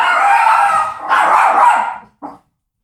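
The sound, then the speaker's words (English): A puppy yaps and whines in two drawn-out, high-pitched bursts, followed by a brief short yip after a pause, close and fairly loud with no talking. “It's puppy meditation.”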